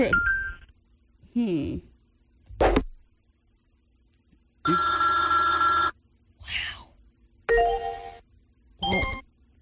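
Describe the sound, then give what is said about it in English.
A string of short electronic alert sounds from AOL Instant Messenger, among them its direct link chime, the alert for a direct connection used to send photos: bright ringing, buzzy tones in separate bursts, with brief voice-like sounds between them. “Oh, that was a direct link sound.”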